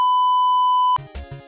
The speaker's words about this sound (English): Yeah, well, Logan, beep this out.